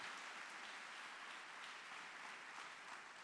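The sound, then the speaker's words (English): A crowd claps steadily and continuously, a dense, even wash of many hands applauding together with no pauses and no voices over it. “Clap, everybody, clap for this.”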